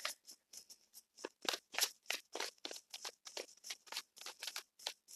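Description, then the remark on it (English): Tarot cards being shuffled, a steady run of crisp, papery slaps and flicks repeating every fraction of a second, with no one talking. “So, still shuffling the cards.”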